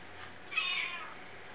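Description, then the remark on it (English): A single faint cat meow, distant and thin, rising briefly and then trailing off abruptly as if cut short, with no voices around it. “Sounds like a cat.”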